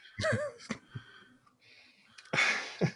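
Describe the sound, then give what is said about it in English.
Heavy, breathy exhalations right up against the microphone, a few loud puffs and wheezy rasps with brief pauses between them, ending in a long noisy rush of air. “Well, now I'm back to breathing on you.”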